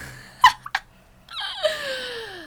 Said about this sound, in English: I need a yawn.